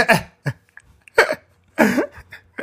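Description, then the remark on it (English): A woman sneezes, a series of sharp, explosive bursts, with short breaths and gaps between them and no talking. “She sneezed.”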